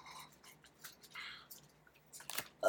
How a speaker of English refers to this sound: So what's up, friends? You're also here stuffing our faces with food. ASMR.